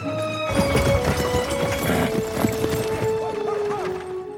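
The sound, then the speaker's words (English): Horse hooves clip-clop in a quick, uneven rhythm as a carriage is pulled along, the clatter dense, with a steady whine-like tone running underneath throughout. “Which is how I ended up carriage driving.”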